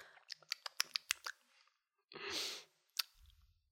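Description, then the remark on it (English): Quiet sipping of a maple chai drink from a cup: a run of small clicks and lip smacks, then a brief airy slurp, then one last soft click. No one speaks. “is lifting up her cup and taking a sip.”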